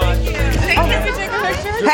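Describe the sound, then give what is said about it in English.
Steady outdoor crowd chatter from a TV show audience in light drizzle, many overlapping voices blending into a dense, continuous murmur with no single speaker standing out, holding a fairly loud, even level throughout. “We have an amazing crowd out here.”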